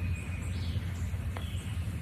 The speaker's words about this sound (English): Chickadee-dee-dee. It's a Carolina chickadee.